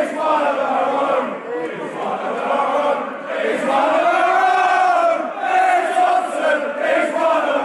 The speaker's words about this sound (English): He's been everywhere, to be fair to the boy today. Crowd response to Ben Thompson.